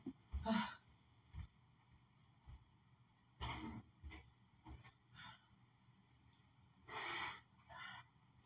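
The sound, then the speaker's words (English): Someone blows their nose in a series of forceful, noisy bursts: three longer blasts spread out, with shorter sniffs and snorts in between. No one speaks. “I can blow my nose, sweetie.”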